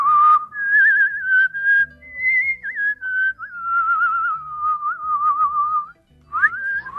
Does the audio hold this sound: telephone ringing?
no